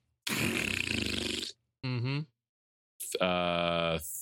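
Three loud fart noises in a row: a long sputtering blast, a short squeaky toot, then a buzzy, drawn-out raspberry with no one speaking.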